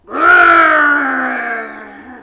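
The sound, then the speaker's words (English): A child's voice, pretending to be a tiger plant after growing from a curled-up ball, gives one loud, sustained growl imitating a tiger, a drawn-out roar lasting about two seconds that slowly fades. “So you need to curl yourself up into a little ball and we're going to get bigger and bigger and bigger, and then give me a big growl because you're now a tiger.”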